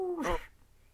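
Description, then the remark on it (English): A single short, fairly loud cat meow with a pitch that rises then drops, followed by quiet background noise. “Hi, Kitty. She's trying to escape from your arms.”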